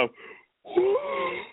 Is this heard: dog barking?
no